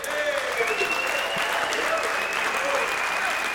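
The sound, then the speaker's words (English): A large audience, some standing, applauds Palmer Luckey steadily, dense clapping with a few cheers and whistles riding on top, loud and sustained throughout. “We've got even some standing applause here.”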